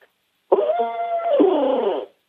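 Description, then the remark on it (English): A single sustained owl hoot, voiced by a person imitating the call in turkey hunting to make a turkey gobble: one reedy, mid-pitched note held for about a second and a half, wavering slightly before dropping and cutting off. “So you want to owl hoot with a single note.”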